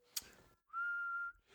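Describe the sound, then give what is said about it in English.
Someone whistles one clear, steady note for about half a second, close and fairly loud, after a brief rustling noise; there is no talking. “But it doesn't say annoy the podcast listeners by whistling.”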